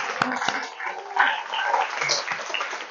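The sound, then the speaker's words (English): An audience breaks into applause, a dense, steady patter of many hands clapping at once that holds at a fairly even, moderate loudness for a few seconds. “Round of applause.”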